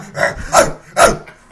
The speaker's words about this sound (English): Mama, there go that dog again.